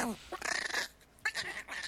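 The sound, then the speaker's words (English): A small dog growls in two strained, warbling bursts separated by a short pause, the sound tense and fairly loud with no one talking over it. “Sounds like an alien life form. It sounds just like the noise that the predator makes.”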